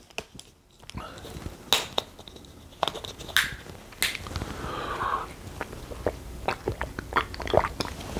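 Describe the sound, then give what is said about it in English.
Someone drinks water: a string of wet clicks and gulping swallows at an irregular pace, with a brief sloshing swish midway and no talking. “Let me get a drink of water here.”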